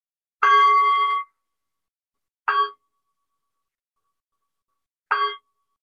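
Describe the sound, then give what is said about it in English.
A meditation bell is struck three times to end a silent meditation practice: the first ring sustains briefly, then two shorter, clipped chimes follow at slow, even intervals. “And we'll practice in this way silently until a ringing bell.”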